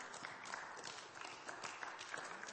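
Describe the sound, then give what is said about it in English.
An audience claps together in a steady, dense patter of many hands, holding an even loudness for a couple of seconds with no voices over it. “Maybe clap if you want to.”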